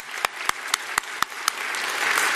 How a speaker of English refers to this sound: So if you see them, you can give a round of applause too.